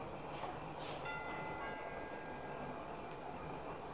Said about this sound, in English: It was a house above the Sunset Strip. We rang the bell and waited. I'll try it again.